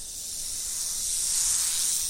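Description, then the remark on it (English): A rattlesnake's rattle buzzes as a warning alarm to a predator, in a steady, high-pitched sizzling hiss that holds for a couple of seconds and swells slightly louder, with no voices. “Of course, if the rattlesnake is spotted by a predator, they have a backup, their trusty back-the-hell-off alarm system.”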